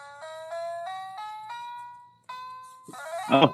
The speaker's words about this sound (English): So that's how people remembered me when I was selling cars. They couldn't remember who I was. Now they know I had this piano tie that played Happy Birthday for their daughter.